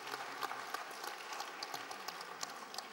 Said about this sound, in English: If you're clapping, clap to God. This is not me.